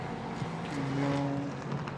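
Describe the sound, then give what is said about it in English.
A top-level race car rumbles past on a track in wet conditions, its deep, throaty tone swelling slightly in the middle before easing off, steady throughout the two seconds, with no one speaking. “Great to see him back in a top level car. Rumbles by us.”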